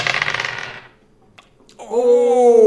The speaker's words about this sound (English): What are you, rolling dice that I gave you? Yes. So far it's at a 1, a 1, a 20, an 8, and a 2.